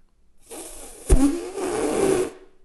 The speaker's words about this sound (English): are you farting?